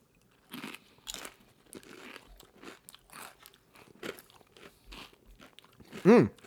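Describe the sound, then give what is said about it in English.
Someone crunches and chews a hot Carolina Reaper chili pepper, with a string of crisp, irregular crunches and moist chewing, then a short, loud, rising voiced sound right at the end. “Now, Carolina Reaper is said to be currently on the market as the hottest.”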